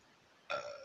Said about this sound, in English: I need to stop burping in the microphone.